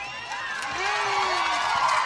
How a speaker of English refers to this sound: The crowd is getting into it. The student section is on their feet.